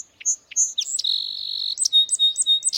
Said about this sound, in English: Almost anywhere in the United States, you can hear the song sparrow. People across the country have recorded this sparrow, one bird singing the same song in thousands of different soundscapes.